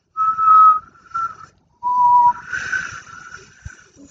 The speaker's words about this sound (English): Where do you put your tongue when you try to whistle? No, like just like the bottom, right? I think.